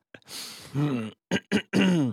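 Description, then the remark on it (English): Someone loudly clears phlegm from their throat: a long raspy hawk and a strained, groaning rumble, then two short sharp hacks and a final gravelly, drawn-out clearing. “No, I'm not going to throw up, but I got to clear some phlegm, man.”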